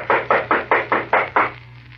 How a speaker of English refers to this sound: I'm going to knock on the door.